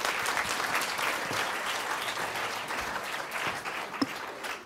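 A crowd applauds two volunteers called to the front, steadily for about five seconds, a dense, even wash of many hands clapping at once with no break, fairly loud throughout and no voices standing out.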